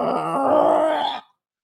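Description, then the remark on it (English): A voice imitates a computer struggling to load a MySpace page, with a strained, groaning exhale lasting about a second, loud, then cutting off abruptly into silence. “All that shit would come up and would your computer start breathing.”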